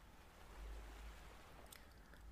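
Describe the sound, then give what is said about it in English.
A steady, soft wash of gentle ocean waves lapping against a beach and tapping the trees at the base of a hammock, with a low rumbling swell and faint fizzing spray, continuous, with no voices. “Listen to how your breath syncs up with the gentle waves lapping against the beach and tapping the trees at the base of the hammock.”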